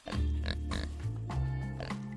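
A baby piglet oinks and grunts continuously, fairly loud, its nasal snorts coming in quick bursts with a few higher squeaky notes over about two seconds.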